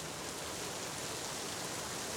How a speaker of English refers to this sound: As the rain kept falling harder and harder, we pressed on,